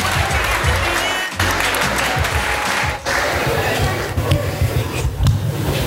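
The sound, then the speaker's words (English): Sustained audience applause as a performer is clapped up to the stage, a dense, steady wash of many hands clapping at once, loud, with faint voices mixed in beneath the clatter. “Everybody clap him up to the stage”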